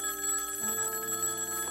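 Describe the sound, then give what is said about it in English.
An old-style telephone bell rings steadily, a bright metallic ringing with sustained harmonic tones, fairly loud and clear, with no voices over it; an anxious call during the Tylenol poisoning scare, ringing at the Cook County Medical Examiner's Office. “Although, as far as anyone knew, the poisonings had been limited to the Chicago area, anxious calls from all over the country were pouring into Johnson & Johnson headquarters and hospitals alike.”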